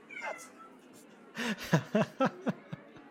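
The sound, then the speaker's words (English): A cat lets out a quick series of short, insistent meows, about five in a row, clear, after a brief quiet stretch with a faint chirpy sound at the start. “Why I just let the cat out of the room before it starts meowing.”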